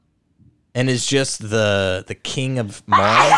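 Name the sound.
sneeze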